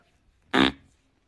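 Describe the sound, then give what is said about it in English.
A single loud fart sound effect, a short buzzy, raspy burst lasting about a third of a second that trails off quickly, with silence before and after and no talking. “You know, farting.”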